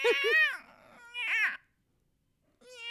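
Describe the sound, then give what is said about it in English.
A human voice imitates a house cat's meow, with a few high, wavering, whiny calls in short bursts separated by a brief pause, then one more starting at the end. “A regular house cat. Okay. Meow.”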